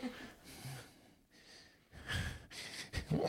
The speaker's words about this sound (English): Just labored breathing on my part. That was comedy labored breathing.